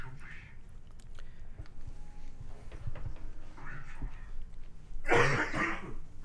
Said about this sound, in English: got up to cough and die. Just had to quickly die.